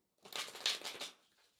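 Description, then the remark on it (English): Tarot cards are shuffled in a quick, papery riffle of several rapid flutters lasting about a second, then fading to quiet. No one speaks. “If you're not like driving a car or like walking, you know, on a busy street, you could even close your eyes and just take a moment to connect to the cards by listening in to the sound of them being shuffled.”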